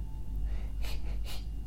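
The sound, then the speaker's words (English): A dog panting, two quick, breathy huffs about half a second apart over a steady low background hum, with no talking. “Say, can you hear him panting? Go and pant for everyone.”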